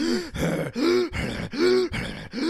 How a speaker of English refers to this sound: as those airways collapse, that produces a really distinctive noise when the dogs are breathing.